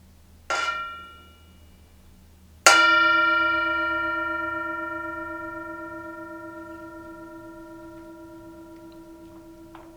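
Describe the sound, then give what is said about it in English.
A Tibetan singing bowl is struck twice, a brief light tap followed by a firm strike whose bright, shimmering tone rings on and slowly fades for several seconds, heard alone. “As always, enjoy the sound of the singing bowl, the Tibetan bell, as we come to this present moment and hear the beautiful sound of the bell.”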